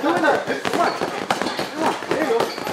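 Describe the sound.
Boxing gloves thud against punching bags in quick, irregular bursts of sharp hits, fairly close, while voices talk steadily underneath.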